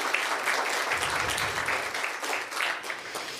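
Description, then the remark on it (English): A steady round of applause from a crowd at a morning Christmas nativity service, for everyone who took part in the service. Dense overlapping claps form a continuous wash of noise that holds at an even level for several seconds with no voices on top. “Let's just give everyone another round of applause.”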